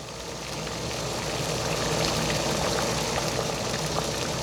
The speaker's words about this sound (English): I love the boiling sound of the hot pot. This sound reminds me of the hot pot restaurant that I used to go to with my parents in Beijing.